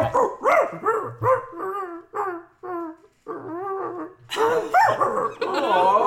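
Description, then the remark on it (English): A person imitates a sad, angry dog with a run of mournful, whining barks and yelps, fairly loud, rising into longer howling, growly cries toward the end. No one speaks. “You just had like a very nice dinner with all your doggy friends, but you had one too many margaritas, and the Uber just cancelled on you, and it's cold out.”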